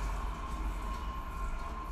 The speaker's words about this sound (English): Wait, the train's going by.